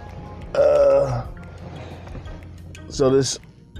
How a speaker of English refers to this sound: And there you go. That's the money bell. Once again.